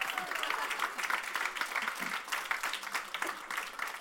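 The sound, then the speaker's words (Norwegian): A burst of audience applause for statsråd (government minister) Lehmkuhl, many hands clapping in a dense, steady patter for several seconds, moderately loud, with no voices standing out. “En applaus for statsråd Lehmkuhl.”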